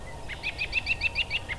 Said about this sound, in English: The cool evenings of spring provide a calm but rich soundscape. The jolly laughing call of the American robin.